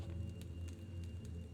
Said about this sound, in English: You can see the flicker of firelight dancing and illuminating the inside of the cave. The odd sound of the fire popping and crackling reaches you as you slowly make your way towards the cave entrance.